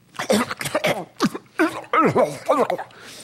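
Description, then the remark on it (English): A voice imitates choking and coughing: a rapid string of loud, strained hacks and gagging bursts with wavering, groaning pitch swoops, about a dozen in three seconds. “And as he was screaming at God, he started choking and coughing.”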